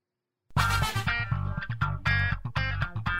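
A loud, bright electronic mobile phone ringtone plays a bouncy melody of repeated synth notes over a steady pulsing bass beat, starting abruptly after a half-second of silence.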